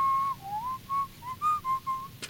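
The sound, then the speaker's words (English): A person whistles a short tune, a clear pitched line gliding up and down through several connected notes, fairly loud, with no talking over it. “It'd be cool if we could whistle that together.”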